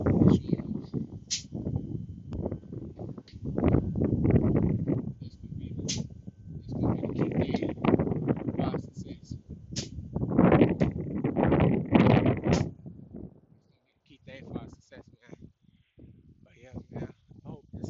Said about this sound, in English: I know it may be windy.